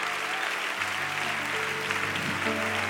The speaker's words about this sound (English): Come on, clap them with some expectation in your spirit. Come on, clap them with some faith in your spirit.